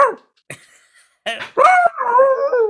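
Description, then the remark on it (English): A voice imitating a dog: a few short barks with gaps between them, then a sustained whining howl that carries to the end. No talking. “My second is just dog.”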